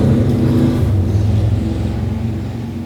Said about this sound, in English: Let the motorcycle have its moment.